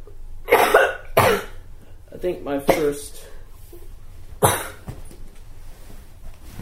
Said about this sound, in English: I'm just coughing. I'll be okay.